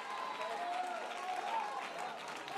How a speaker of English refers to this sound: Come on, don't clap for me. Don't clap for me.